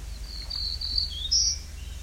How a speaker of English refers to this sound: There's an American red start here too.